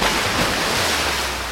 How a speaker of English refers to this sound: And finally, with a rush of wind, the blue brings the waves of the oceans crashing again over the prison that they've crafted for him.